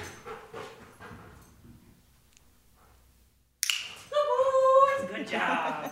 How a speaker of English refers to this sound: Hey, wanna find dope? Wanna find dope? Find dope? Search! When he finds them, hidden in a closet, this super energetic dog completely freezes.